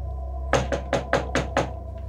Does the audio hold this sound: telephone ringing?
no